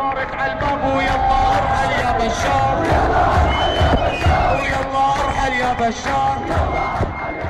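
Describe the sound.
A large protest crowd chants and shouts together at a demonstration against the Assad regime, in Syria or the diaspora, many voices loud and continuous, with rising calls and cheers over a dense background roar.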